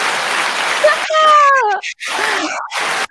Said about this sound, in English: There you go. Oh, my God. I love that applause.